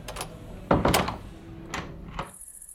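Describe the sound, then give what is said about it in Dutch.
A door opens with a brief creak and thud, then swings shut with a softer knock, a moderately loud handling sound with no talking. “Loop heel voorzichtig naar de deur en ga er doorheen.”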